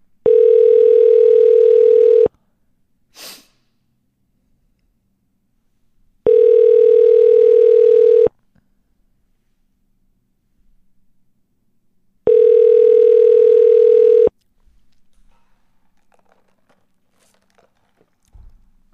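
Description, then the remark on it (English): A phone line rings three times with a steady electronic ringback tone while a call to a drugstore chain's corporate office is being transferred, each two-second burst separated by about four seconds of near silence, with a few faint clicks in between. “For help, please hold while I transfer your call.”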